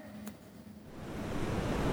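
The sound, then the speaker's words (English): Rough ocean waves of a shipwreck at sea surge and roar, a broad wash of surf that builds steadily louder over two seconds, with a brief low tone near the start and no voices. “Did you hear? Shipwreck at sea.”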